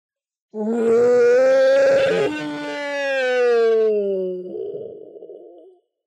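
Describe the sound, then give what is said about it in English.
A loud, drawn-out monstrous roar full of wrath from a huge creature in a cavern bellows for about five seconds, its pitch wavering and sliding downward before breaking into a rougher, ragged growl at the end. No other sounds accompany it. “A roar full of wrath drowned Thyrin's words.”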